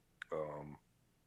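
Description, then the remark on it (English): A single sneeze: a sharp burst of breath followed by a short, loud voiced cry that cuts off quickly, leaving quiet afterward. “Bless you. Excuse me.”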